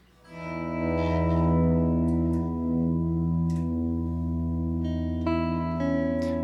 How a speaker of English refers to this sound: Hear it? The tectonic chord's been strummed. White noise, clear cuts, tremolo